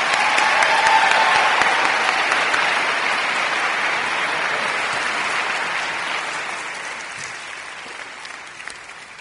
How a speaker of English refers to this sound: So give him a little warm welcome as he comes. Please clap for him and get him ready. So here he comes.